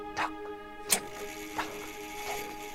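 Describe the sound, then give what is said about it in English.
A clock ticks slowly and steadily, four crisp clicks at an even pace, fairly quiet over a constant low electrical hum. “Got to have clocks.”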